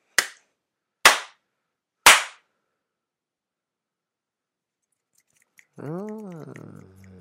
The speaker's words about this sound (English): Yeah, it sounds underwhelming now. Yeah, it does. Three slaps and then like a bunch of snaps.